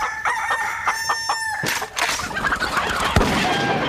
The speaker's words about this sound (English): And here's the bird. The grey linen chickens that Daddy brought home. That turned out to be roosters.